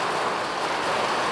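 Hailstones pelt down in a squall coming off the Atlantic Ocean in Ireland, about 200 meters from the sea: a dense, continuous hissing clatter that stays loud and steady throughout, with no voices present.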